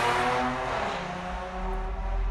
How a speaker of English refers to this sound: Motorcycle. Pardon that interruption.